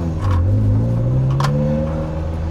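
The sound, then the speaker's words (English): A Ferrari Mondial T, built from 1989 to 1993, revs loud, its harmonic engine whine climbing steadily in pitch as the car accelerates, with no voices over it. “TestDrive: Ferrari Mondial T”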